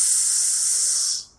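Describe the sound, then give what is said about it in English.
A voice imitates hissing steam for a steamer ship with one steady, breathy hiss lasting just over a second, bright and airy in tone, then trailing off quickly at the end. “For the steam. Yeah, for the steam.”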